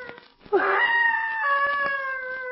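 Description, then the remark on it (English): An eerie, human-like scream rises suddenly and holds as a long, loud, wavering wail, sounding distant and echoing as if from deep in the woods. “That cry sounded human. It's like a scream of mortal terror.”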